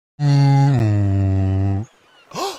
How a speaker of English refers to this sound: Uh-oh, Tugger's whistle. You know what that means? Tugger's whistle's blowing, means we must be going.